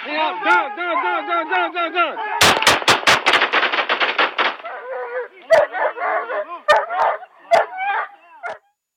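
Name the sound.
police dog barking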